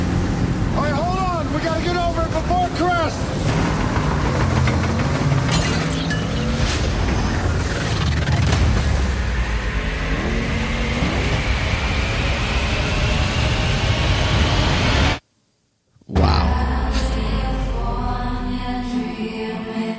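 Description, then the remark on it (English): A loud trailer soundtrack for the disaster movie San Andreas starring The Rock: a constant deep roar and rumble with sudden crashing bursts and voices buried in the mix. It cuts to silence for a moment before the roar returns. “Alright, so that was the trailer for San Andreas starring The Rock. That looks scary.”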